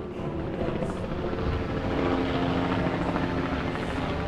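A helicopter, used in an armed assault on the principality of Sealand, drones steadily overhead, its rotor chop and engine whine forming a continuous, fairly loud roar that holds throughout with no voices present.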